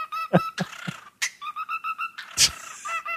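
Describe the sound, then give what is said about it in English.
A bird mimics dubstep music, a rapid string of buzzy, stuttering electronic warbles and rhythmic pulses broken by sharp noisy bursts, with no one talking. “We played this on TMS, the bird doing dubstep.”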